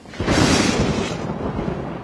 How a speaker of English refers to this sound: The thunder can't get us, right? Nope. We're thunder buddies, and the thunder knows it. We're totally safe.